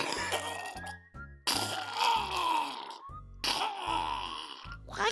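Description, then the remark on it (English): A dog from Dick's Discount Pets coughs and hacks in harsh, raspy bursts, three rough fits in quick succession, loud, with throaty grunting pulses underneath and no one talking. “Doggy coughing, Mommy.”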